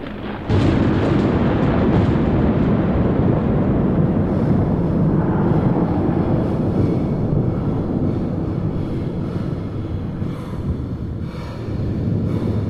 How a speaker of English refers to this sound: And as that's happening, the biggest lightning, single lightning bolt I've ever seen in my life levels the ground.